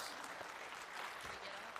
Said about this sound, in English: Will you give these people a big round of applause?